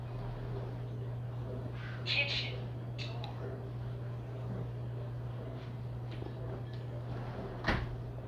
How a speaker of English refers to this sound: Kitchen door.